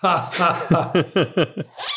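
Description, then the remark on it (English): A voice imitates a zipper with a quick series of short, buzzy vocal bursts in a steady rhythm, fairly loud, with a breathy hiss at the end. “Cue zipper noise again.”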